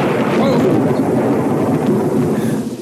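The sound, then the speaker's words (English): The Castle Thunder sound effect, originating from the 1931 movie Frankenstein: a loud thunderclap with a long, rolling low rumble that stays heavy for nearly three seconds before starting to fade, with no voices over it. “Also, that sound effect originated from the 1931 Frankenstein movie.”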